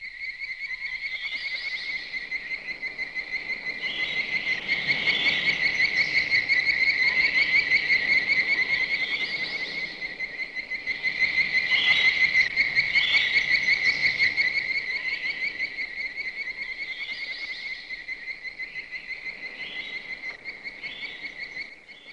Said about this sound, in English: high-pitched like chirping noise or like a screech from the desert.